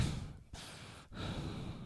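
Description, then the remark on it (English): Breathy exhales and inhales picked up by an expensive microphone, a couple of airy sighing breaths separated by brief pauses, with no talking. “I mean, expensive microphone picks breathing.”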